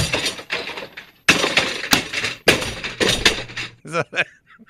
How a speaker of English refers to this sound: No, I was throwing chairs, man. Most definitely were throwing chairs.